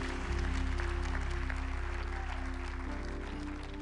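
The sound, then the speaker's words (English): An audience claps steadily for a few seconds for everyone who prayed a prayer, a dense, even patter of many hands over a low, sustained musical drone, easing off slightly at the end. “Can we give everyone who prayed that prayer just a round of applause real quick?”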